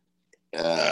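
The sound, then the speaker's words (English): A sudden loud, voiced sneeze bursts out after a brief silence and a faint click, harsh and breathy, filling the rest of the moment. “Bless you. Thank you.”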